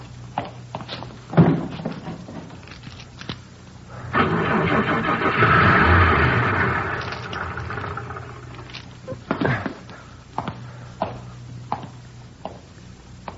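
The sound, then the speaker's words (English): A car engine cranks and turns over for a few seconds, surging then fading, framed by sharp mechanical clicks and clunks before and after. No one speaks. “Lousy car wouldn't start. I'd be 3 miles away if it would have started.”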